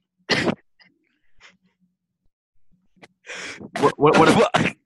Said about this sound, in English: This kid keeps coughing, man. Oh my god, bro, you all right, man?